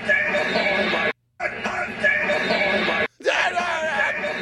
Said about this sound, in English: You hear someone screaming like, we got him on it.